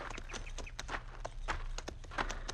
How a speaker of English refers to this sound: Get down off your horse, senor. All right. We lead our horses over onto that flat. Where they'll be in the shade. Come on, Diablo.